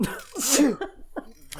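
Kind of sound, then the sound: human body sound, sneeze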